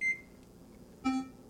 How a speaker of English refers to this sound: A C. Right. So it's a B flat to a C just to turn on the microwave.